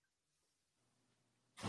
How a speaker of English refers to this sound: He's slamming doors and shit. You got it. That door's just really loud.